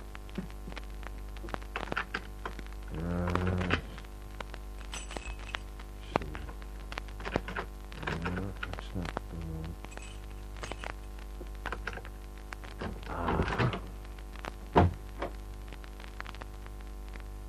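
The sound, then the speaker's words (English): A lock is picked with skeleton keys: scattered metallic clicks, scrapes and rattles, with short creaking bursts as a door is worked open, over a steady low hum. “After a couple of minutes of pressing the gold-plated buzzer, I took out my skeleton keys.”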